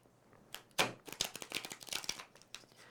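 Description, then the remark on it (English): A deck of cards is shuffled before a card is picked, a rapid burst of crisp riffling clicks and flutters that runs steadily for a couple of seconds with no voices. “Let's shuffle these babies up.”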